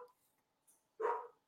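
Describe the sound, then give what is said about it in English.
A dog lets out one loud bark after a short quiet stretch, with a fainter yelp-like sound at the very start. “Who's barking at us?”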